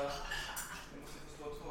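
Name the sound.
dishes clinking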